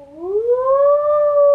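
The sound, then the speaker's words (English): A fire truck siren wails loudly, its tone sweeping steadily upward and holding high, with no voices present. “She loved to stick her head out the window and listen to the sound of the sirens.”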